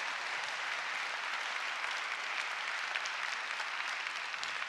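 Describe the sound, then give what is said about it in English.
An audience applauds in a steady, dense wash of clapping that holds evenly for the whole stretch, with no voices breaking through. “I'll give you all a chance to applaud in a second.”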